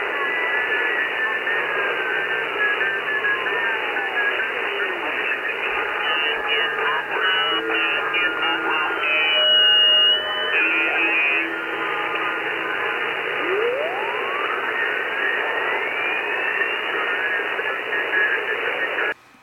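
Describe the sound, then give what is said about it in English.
Crackling shortwave radio interference from nearby ham radio stations, many outside the country transmitting on far more power than needed and bleeding over a wide bandwidth: a steady wash of hiss and static with warbling tones sweeping up and down, overlapping signals and faint garbled fragments, loud and continuous throughout. “Now, what you just heard is interference from other nearby ham radio stations, many of them outside the country and transmitting on much more power than they need, bleeding over, covering a wide bandwidth.”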